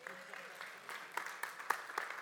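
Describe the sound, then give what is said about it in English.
A crowd claps steadily, a dense patter of many hands with sharper individual claps popping out above the wash, holding a fairly even loudness throughout. “Another hand of applause for everyone that's going to be there.”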